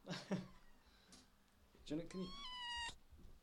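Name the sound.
kitten meowing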